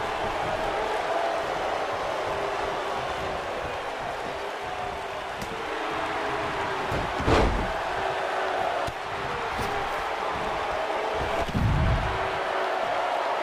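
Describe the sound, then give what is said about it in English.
A sharp, heavy body impact from a huge clothesline in a wrestling ring slams down once over a constant roar of a booing arena crowd, with a second, softer thud a few seconds later. “Huge clothesline, but the fans just booing Cena.”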